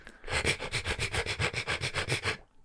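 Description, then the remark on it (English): Teeth-brushing foley sound from a film's end credits: a quick, steady back-and-forth scrubbing with about fourteen even, hissy strokes over a couple of seconds, fairly loud and with no talking. “Does that sound like a toothbrush?”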